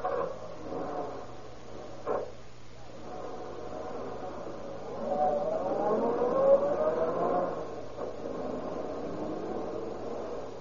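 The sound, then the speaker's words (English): A car engine idles with a low steady rumble, then revs and rises in pitch as the vehicle pulls away, continuing to drone on. There is a brief knock near the start. “Get in the car and we'll drive around a bit.”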